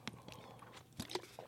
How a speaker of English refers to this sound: I gotta take a sip of water on that one.